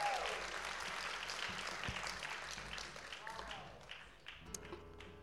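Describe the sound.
A crowd applauds a speaker with dense, steady clapping that slowly thins out over several seconds, a few scattered claps and faint voices lingering at the end.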